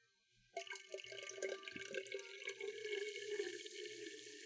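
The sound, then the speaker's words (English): A steady pour of a fizzy carbonated drink from a can into a glass mason jar, starting abruptly and running continuously with a bubbling, splashing rush and a rising ringing tone as the jar fills. “Nice can pour. Yeah. That carbonation sounds sexy. Right into my mason jar.”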